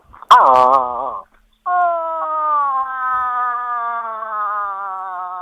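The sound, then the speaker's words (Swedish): A human voice imitates a moose call: a short, falling moan, a brief pause, then one long, loud, nasal drawn-out bellow that slowly sinks in pitch. “Du, avslutningsvis får vi höra det där älgel-lockandet lätet igen.”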